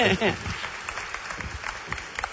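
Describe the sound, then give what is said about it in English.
Scattered applause from a church audience as a family comes up for a baby dedication, a burst of many hands clapping unevenly with a few voices mixed in, fading to lighter claps. “Oh, you can clap.”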